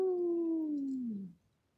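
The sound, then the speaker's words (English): The Shoecat, a cat up on a roof at night, turns its head up to the moon and yowls: a single long, wavering yowl that slides slowly downward in pitch for just over a second before cutting off, loud, with nothing else around it. “The Shoecat turned its head up and yowled, Ow!”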